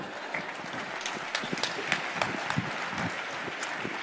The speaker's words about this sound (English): Let's clap it up for him.